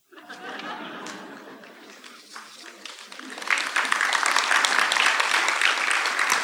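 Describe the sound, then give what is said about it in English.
A crowd applauds steadily, the clapping swelling noticeably louder and denser partway through, with faint laughter and chatter mixed into the dense patter. “You guys got to stop clapping.”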